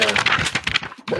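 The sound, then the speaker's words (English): Paper being crumpled and rustled in quick, crackly bursts for about a second, a brief pause, then one more crinkle. It's fairly loud, with no talking. “Of course I'm doing the paper sound.”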